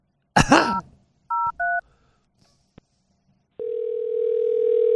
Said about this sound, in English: You point to me when the phone's ringing like I don't know the phone's ringing.